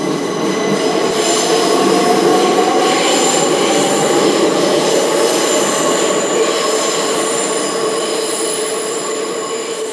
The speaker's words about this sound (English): and finally the train leaves.